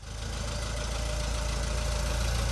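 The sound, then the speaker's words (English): A small 1949 Farmall Cub tractor engine idles, its steady, rhythmic low chugging loud and unbroken for a few seconds, with no voices. “What we got here is a 1949 Cub that I rescued from a field about 15 years ago.”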